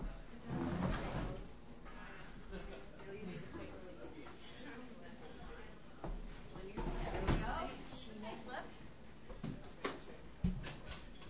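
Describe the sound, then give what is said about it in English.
A wooden stool, slightly higher than the chairs, is dragged and bumped into position for a performer at Halbert's, giving several scrapes and hollow knocks spread across the scene, with people talking quietly in the background. “And actually, there's a stool just around the corner there. If you can just pass me that, it's just a tad higher than these chairs.”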